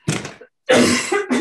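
A person coughs and clears their throat close up: one rough, raspy burst, a brief pause, then a longer, strained throat-clearing that breaks into another short cough.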